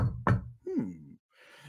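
Two sharp, fairly loud knocks on a door, followed by a brief creaking, tonal sound and then soft hiss.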